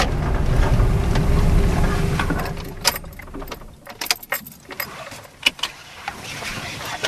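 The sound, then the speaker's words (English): Low, steady rumble of a car interior for a couple of seconds, then the hum drops away and keys jangle and clatter in short bursts. No one speaks. “this is where we sat in the car”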